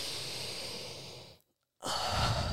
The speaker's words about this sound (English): Breathing all the way out. We're going to breathe in through the nose now and out through the mouth.